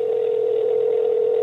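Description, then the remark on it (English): A steady, unbroken telephone dial tone hums at a constant pitch and level over a thin phone-line hiss while phoning a friend, with no voices or pauses. “Phoning my friend. I hope he answers.”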